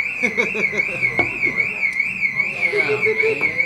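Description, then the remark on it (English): A car alarm in L.A., from a car broken into, blares a continuous, rapidly warbling high-pitched tone that wavers up and down steadily throughout, with faint voices and street noise underneath. “The car broken into. It must be in L.A.”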